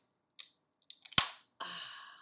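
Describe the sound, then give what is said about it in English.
A can of Dezo spiked superfruit water being cracked open: a few quick metallic clicks and a sharp pop, followed by a steady fizzing hiss that trails off, with no talking. “Of course, I'm going to crack one open right now because I literally just got home from work.”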